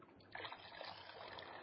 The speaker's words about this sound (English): I'm going to add some hot water to that one.